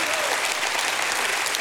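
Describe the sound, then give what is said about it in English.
An audience claps together in praise of God, a dense, steady burst of applause, loud, continuing evenly for under two seconds without pause. “If you believe it, give God a hand clap and a shout of praise.”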